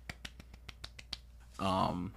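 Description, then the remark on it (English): About eight quick, evenly spaced hand claps ring out crisp, followed by a short burst of voice after they stop. “So clap it up.”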